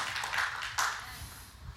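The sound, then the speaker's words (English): An audience claps during a sermon in a thin, scattered way, a steady wash of hand claps with a couple of sharper, louder claps standing out. No one speaks. “I'm preaching better than you're clapping today, but that's okay.”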